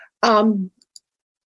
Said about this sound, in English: Oh my God, I am just clicking on everything. Oh my gosh.